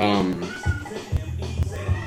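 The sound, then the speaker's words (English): A short, high, wavering cat meow at the very start, followed by a steady low thumping beat that carries on to the end. “don't even worry about it, it's the cat people. Might be in heat.”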